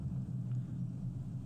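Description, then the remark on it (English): Steady low-frequency road rumble inside a moving car, a continuous droning hum with no voices, fairly quiet and even throughout. “I'm driving in a car”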